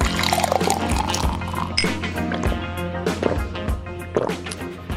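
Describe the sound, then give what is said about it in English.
Heavy rain pours down steadily in a dense, loud wash of watery noise, with irregular splashes and drips cutting through. No one speaks. “So, there's a lot of rain right now, and we are about to go to number 7, but the rain is very apparent.”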